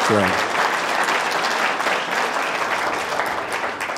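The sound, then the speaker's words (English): A church audience claps for its senior pastors, steady, dense, continuous applause that stays fairly loud throughout, with a brief voice at the very start before the clapping takes over. “So can we give our senior pastors a clap?”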